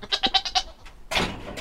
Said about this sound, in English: It's a cool summer morning on Edelin Street, and like most days, I've come to milk two of Sitka's resident goats, Sunny and Tanya.